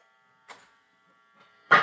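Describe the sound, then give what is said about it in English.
Chimey electric guitar with a delay effect: bright, sustained high notes ring steadily while plucked attacks repeat, the last one loudest and fullest. No one speaks. “And so I did a chimey thing, which, you know, chimey, here's what I would call chimey. A little bit of delay.”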